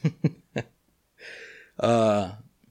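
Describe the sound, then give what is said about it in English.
A female dog, excited and restless, sniffles in three quick, snuffly bursts, then lets out a longer breathy huff and a louder, voiced whine-like snort. No one talks over it. “And sorry if you guys hear that sniffling. My dog is going, the co-host that's normally here, but you can't see her.”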